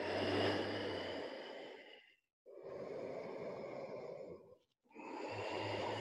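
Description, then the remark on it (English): A person doing yoga breathes slowly through the throat, breaths rasping in and out in two long airy whooshes separated by brief pauses, like a loud constricted whisper with no words, a low hum beneath the first and last. “Make the sound of your breath come from your throat.”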